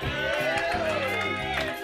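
An audience applauds a guest as he leaves the stage, steadily and loudly, with cheering and overlapping voices mixed into the clapping for the whole two seconds.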